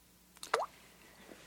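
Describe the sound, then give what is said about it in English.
A sugar lump drops into a cup with a crisp liquid plop, and a much fainter second plop follows about a second later, with no talking. “One lump or two? Two.”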